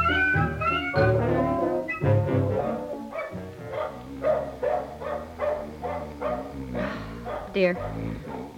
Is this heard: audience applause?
no